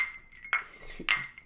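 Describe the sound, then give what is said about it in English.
Two bright glass clinks, about half a second apart, each ringing briefly with a high tone before fading. Quiet, with no talking. “I already clinked you.”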